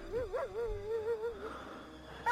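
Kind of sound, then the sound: animal, dog whimpering and barking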